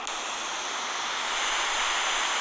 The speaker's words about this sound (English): Or I can do like a waterfall.